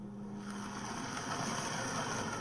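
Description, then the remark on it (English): A car drives through snow and slush in Sviatoshinsky, a poorer neighbourhood of Kiev, a steady wet hiss of tyres with a low engine hum that fades after the first half second, no voices. “Another car steers its way through the snow and slush in Sviatoshinsky.”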